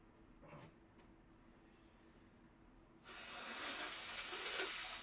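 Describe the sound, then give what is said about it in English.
Someone blows their nose: after a few faint sniffs, a forceful, breathy honk builds into a sustained hissing blast lasting about two seconds, louder toward the end. “Okay, real quick, I need to blow my nose, and then we're going to get to shout-outs, okay?”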